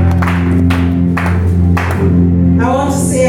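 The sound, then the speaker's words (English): An audience in Kumasi claps together as a clap offering to the Lord while taking their seats, a dense wash of applause swelling in bursts over loud, sustained organ or keyboard chords. “Give the Lord a clap offering as you take your seat.”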